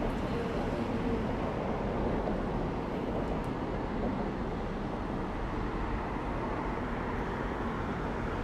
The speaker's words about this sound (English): The car sounds so weird. Right, they sound amazing. Dude, I love hanging out here. Like, outside, and just hearing the fucking cars go by. It's like such a relaxing fucking vibe.